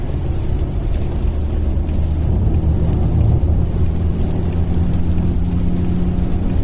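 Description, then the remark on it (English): A car engine that is half of a V8 burbles steadily with a deep, throaty, V8-like rumble, loud, its low thrum swelling slightly midway with no voices over it. “And I don't know if they're doing something with the audio, to make it sound like it's waffling a bit like a V8. But do you hear that? It's got a wall to it, which you get with a V8, which this is only half of.”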